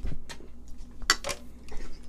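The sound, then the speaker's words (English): Glasses clink once in a toast, a short ringing tap amid a few softer knocks and handling clatter, with no one talking. “That was the worst cheers I've ever heard.”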